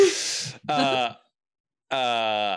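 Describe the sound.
Heavy breathing right up against a microphone: a loud, rushing exhale, then two strained, voiced breaths like low groans, separated by a short silence.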